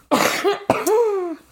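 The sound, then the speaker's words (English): A person coughs twice, each harsh burst trailing into a voiced, groaning tail, with the second cough longer and more strained than the first. “Hold on, I have to cough.”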